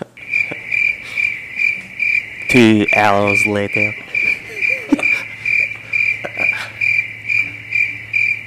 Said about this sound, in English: I didn't set up the 9 second fucking cricket drop. Yeah, that was intense.